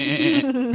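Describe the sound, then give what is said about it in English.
A person gives a short, loud billy-goat bleat with a wavering, nasal pitch, a single vocal imitation lasting under a second. “The Billy Goat. As he does goat.”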